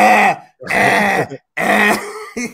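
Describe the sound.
A person imitates a cough three times in quick succession, each a loud, rasping bark, with a short fourth burst trailing at the end. No speech.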